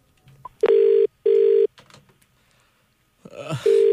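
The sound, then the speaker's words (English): A phone call being placed: loud, steady electronic telephone tones sound in three long bursts separated by short pauses, with a faint voice murmuring briefly in between. “Now, get him on the phone.”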